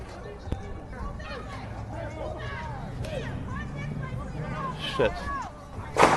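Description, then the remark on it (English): Scattered gunshots crack out at irregular intervals, a few sharp bangs with the last one loudest, over a steady murmur of crowd voices and street noise. “These seem to be gunshots.”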